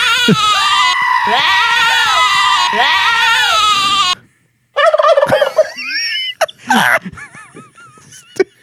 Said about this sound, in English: It's a bunch of wild turkeys up in here.